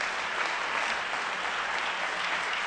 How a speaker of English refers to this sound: Why don't we give the Lord a good hand clap of praise?